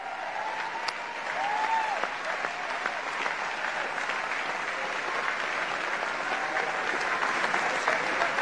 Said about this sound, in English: It was the largest applause I've ever heard.